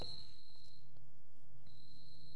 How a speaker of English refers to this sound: I'm hearing a cricket. Yeah, I hear that too.